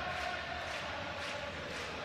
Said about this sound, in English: The crowd singing ….